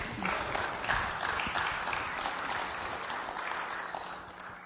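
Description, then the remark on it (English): An audience applauds steadily, many hands clapping in a dense, continuous wash that holds at a fairly even level, then eases slightly toward the end. “Somebody clap now.”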